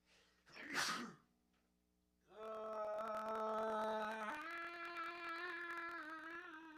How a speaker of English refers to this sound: I'm going to sneeze. Give me a second.